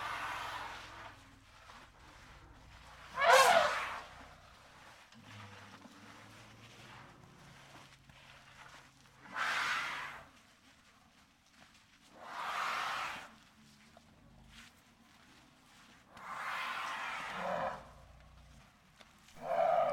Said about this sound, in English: It wasn't super duper obvious, was it? But yes, you're right. It was an elephant. But it was a tricky one.